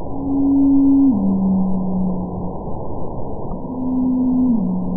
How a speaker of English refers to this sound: Over the years, these eavesdropping biologists have noticed a mysterious trend that certain blue whale calls are gradually lowering in pitch over time. For example, here's a call from 2002, followed by one from 2017.